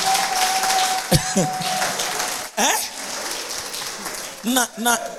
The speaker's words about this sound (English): You give the Lord a clap. Are you with me?